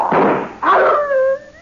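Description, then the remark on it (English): A dog named Murphy, set on a man by its owner, attacks with two harsh snarling bursts, then breaks into a rising, drawn-out whine. Loud, with no voices. “I do not like the actions of your dog, monsieur.”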